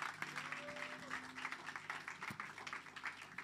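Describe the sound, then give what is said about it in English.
A crowd of people clap their hands together in a dense, steady burst of applause lasting several seconds, with faint voices or a sustained tone faintly audible beneath, clapping in praise to Jesus during worship. “Clap your hands to Jesus.”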